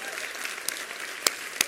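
audience clapping and applauding

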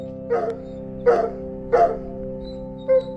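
dog barking

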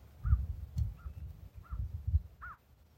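birds calling at dawn

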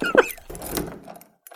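door being opened

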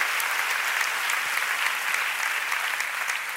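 audience clapping hands

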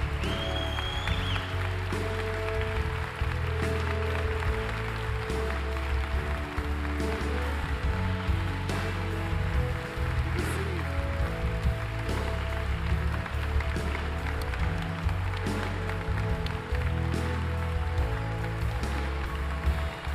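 audience applause

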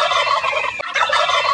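male wild turkey gobbling

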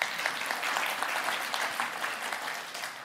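audience applause

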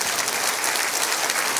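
audience clapping hands

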